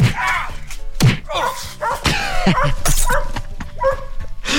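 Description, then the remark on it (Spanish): A dog barks and yelps in a rapid, loud burst of sound effects, with a few heavy thumps mixed in between the barks. “Pon al flemosito primero, después patada y luego al perro, ¿sale?”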